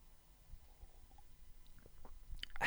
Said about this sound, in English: And excuse me, I'm about to take a sip of this water.